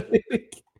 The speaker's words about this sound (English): Bless you. It was a hiccup.